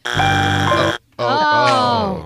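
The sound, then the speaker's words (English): Someone imitates a game show wrong-answer buzzer, marking a first wrong answer, with two loud, harsh, nasal blasts, the first about a second long and steady, the second slightly longer with a wavering pitch. “That's your first buzz.”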